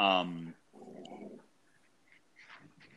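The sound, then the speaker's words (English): A female Labrador named Dottie growls at her owner in a low, rumbling burst lasting under a second, right after a brief loud whining yelp; faint, scattered sounds follow. “That's my lab, if anyone's curious. And she's like growling at me right now for some reason.”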